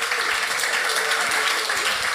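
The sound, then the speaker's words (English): An audience at the NYU Steinhardt Jazz Interview Series claps for a guest musician, a dense, even wash of many hands with no gaps, loud and sustained throughout without any voices rising above it. “How about a warm round of applause for …?”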